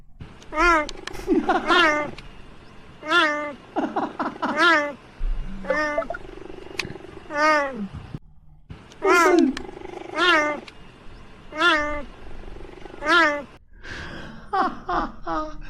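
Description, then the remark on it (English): A cheetah gives a rapid series of high, chirping meow-like calls, about a dozen in quick succession, fairly loud, with brief pauses between them and no talking. “I was today years old when I discovered that cheetahs meow like a cat.”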